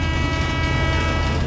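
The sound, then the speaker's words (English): A steady, loud rumble of a train rolling along the rails, with a deep low drone and faint mechanical hum running continuously throughout, no voices present. “We now go to two old friends talk about biodiversity loss on a train.”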